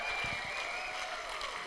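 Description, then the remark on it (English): An audience claps together in praise to God, a dense, steady wash of many hands applauding at an even loudness with no voices over it. “Come on, if you believe that, give God a clap of praise.”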